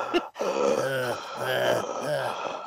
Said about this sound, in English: He sounds like a traditional wrestling mark. Yeah. Deep breathing.